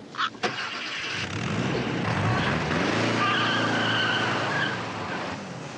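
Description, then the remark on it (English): A car, taken by a woman in a scene from the film Harold and Maude, revs and pulls away with tires skidding and squealing, a sustained high screech over a loud engine roar that fades slightly at the end. No one speaks. “That woman! She took my car!”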